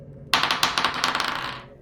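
A thrown metal war pick clangs and clatters down a tunnel hallway, a sudden bright crash followed by a quick run of ringing, rattling bounces that fade out over about a second and a half.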